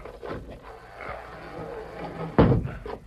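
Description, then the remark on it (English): A heavy wooden trap door in the floor creaks and scrapes as it is hauled up, ending in one loud thud as it swings open and drops back. “It's a trap door. There must be a cellar or something. Help me lift a tunnel.”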